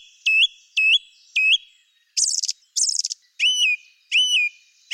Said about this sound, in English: The song thrush has a magnificent song, which is unusual in its structure. The male sings a short phrase and then usually repeats it, maybe 2 or 3 times. He pauses for a moment and then repeats a totally different phrase.